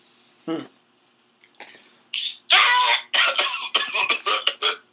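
A strained vocal rasp, then a run of loud, harsh coughing fits from a smoker, several rough bursts in quick succession with brief gaps between them.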